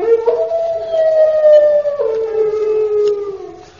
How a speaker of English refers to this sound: That's no ordinary dog. It's a hound. A hound? Hey, did you hear that? There's a whole pack of them. There's a whole pack of horrible hounds.